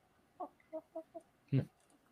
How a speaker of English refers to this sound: My chicken eats better than most of you. It's eating shrimp right now.